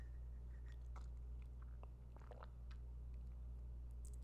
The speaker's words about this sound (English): Sorry, I had to get a sippy sip. Oh, that made it worse. Love how coffee just makes your throat drier.